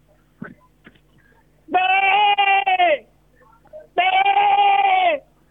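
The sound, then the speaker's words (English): A bow hunter imitates the bleat of a goat shot with a bow, letting out two loud, drawn-out bleats about a second apart, each nasal and slightly wavering, with only faint background noise between them. “And he's about to show us what the noise a goat makes when you put a bow into it.”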